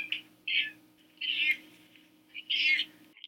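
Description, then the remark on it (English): A cat named Buttercup meows repeatedly in short, high-pitched bursts, some brief and some drawn out, over a steady low background hum with no one talking. “Those meow sounds are compliments of my girl, Buttercup.”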